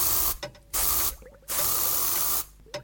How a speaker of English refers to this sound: Next, we add some flea spray. This must be flea spray for cats. Dog flea spray will not get the same results. Trust me, I have tried.